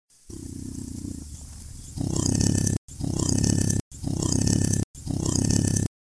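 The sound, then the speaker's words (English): A leopard growl, reversed, sped up and looped to show how the Ecto-1 siren was made: a low rumbling swell gives way to four loud, raspy, roaring bursts in quick succession, each cut off abruptly, with no talking. “Now here it is, sped up and repeated.”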